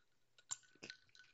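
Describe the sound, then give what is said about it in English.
Someone takes a quick sip from a drink, with two brief, wet slurping and swallowing bursts amid soft mouth noises. Quiet, and no one speaks. “I need to take a sip here.”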